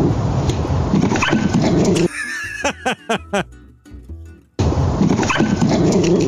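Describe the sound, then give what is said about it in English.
A dog barks at the mailman, a quick run of five or six sharp, high, fairly loud barks, set between stretches of people talking. “It continues to bark at the mailman afterwards.”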